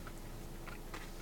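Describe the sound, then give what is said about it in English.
Quiet chewing of a crunchy dessert topped with M&Ms and Heath bar pieces, with a couple of crisp crunches standing out over a soft, steady background and no one talking. “Okay, I know this is a nightmare for us to be chewing like this.”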